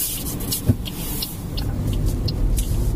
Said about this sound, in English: Oh, I'm in the car. About to set off. I feel massively nervous. I'm just trying to fight my way through the school run traffic in Portsmouth.